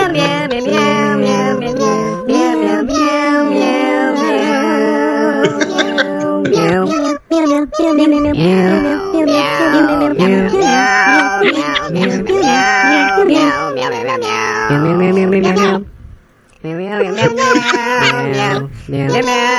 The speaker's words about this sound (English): They are a group of musical cats, apparently, who have submitted some songs to play during this special. And here's the first one.